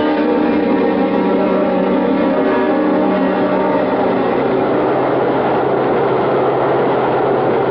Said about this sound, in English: Come on. Come on, we're at the subway.